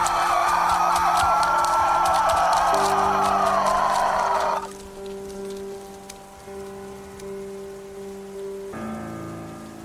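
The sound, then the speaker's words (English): Steady rain hisses and patters for several seconds, then cuts away abruptly, leaving a quieter sustained tonal drone with faint hum. “Even though the rain didn't help, I didn't move.”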